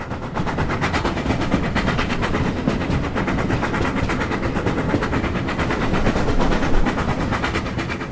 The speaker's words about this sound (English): So the train's now arrived in Medstead and Foremark station.